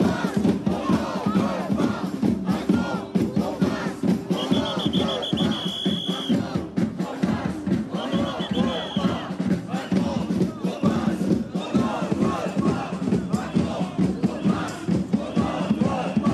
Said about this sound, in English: This is a protest that erupted today in Paris over vaccine passports. Play it for me.